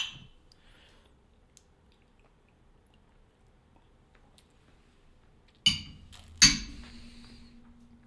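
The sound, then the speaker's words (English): Two bright glass clinks, close together and fairly loud, ring out after several seconds of near silence, the second one leaving a short resonant ring as the glasses touch in a toast before tasting a drink. “All right, let's go ahead and give it a taste. Cheers. Cheers.”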